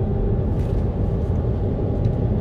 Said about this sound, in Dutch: En morgen is het helemaal klaar en nu wordt het lastig, hè? Een invoerende vrachtwagen. Nou goed, het gaat allemaal goed.